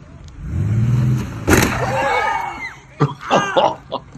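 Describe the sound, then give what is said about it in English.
A car engine rumbles and grows louder as it approaches a man on the street, then a sharp sudden bang as it hits him. His strained vocal cries and short gasping bursts follow as the engine noise fades. “Here comes the car.”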